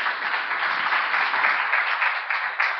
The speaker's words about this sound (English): Come on, give him a good clap offering, amen.